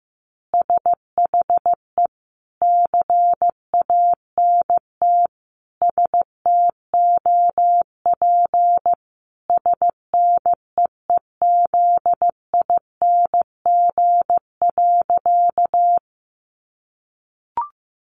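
Morse code at about 15 words per minute: a single steady mid-pitched tone keyed into short dots and longer dashes, grouped into letters and words, then a pause and a faint click.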